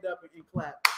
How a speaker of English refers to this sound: I mean, let me clap it out because boxing needed that. Boxing needed that type of fight.